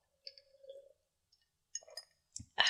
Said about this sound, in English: Let me take a sip. Hold on.